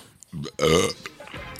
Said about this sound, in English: You just finished talking about you're going to be professional and you burp right into the mic. What is that?